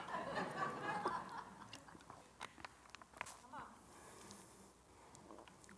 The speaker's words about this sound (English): I got to take a little sip.